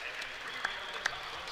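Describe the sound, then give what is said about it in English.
A large crowd at the Murphy Center gives a standing ovation, a steady, dense wash of clapping that never lets up, with a couple of sharper accents standing out briefly. It is moderately soft overall, with no talking. “And a standing ovation from the crowd here at the Murphy Center”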